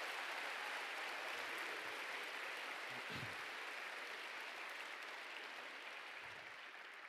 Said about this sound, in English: I think God is worthy of our praise. If you agree, would you give him a clap offering this morning?